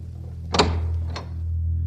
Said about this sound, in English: Glancing back at Farfalla, he grabbed his coat and boots and let himself out, closing the door behind him.